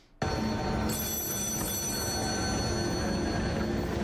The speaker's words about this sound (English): Answer the phone.